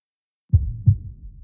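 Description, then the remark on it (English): A heartbeat sound effect: a deep, muffled heartbeat thumps twice in a quick lub-dub rhythm, low, with a soft rumbling tail fading after the beats and no voices. “So this episode, we want you to listen for a special sound effect of a heartbeat.”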